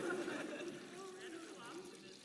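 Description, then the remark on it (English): Water pours steadily into a container for a couple of seconds, a soft continuous splashing with a faintly rising gurgle as it fills, quiet. “Let's pour a lot of that in here.”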